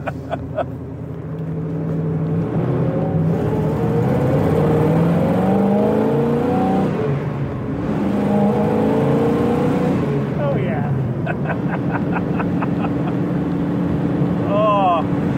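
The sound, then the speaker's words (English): A muscle car's V8 engine rumbles steadily throughout while driving in cold weather, rising and falling in pitch as it revs under load. Squeaks and rattles sound over the low drone, and brief voices come near the end. “God, what a machine. I forgot how crude these were. Yeah, squeaky and rattly.”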